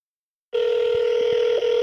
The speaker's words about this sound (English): Okay, here we go. I'll call them now. Okay, it's ringing. Okay, it's ringing.